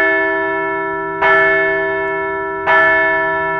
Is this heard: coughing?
no